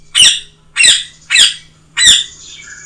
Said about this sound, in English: A parrot screeched suddenly and flew low over your head. A flash of blue and green.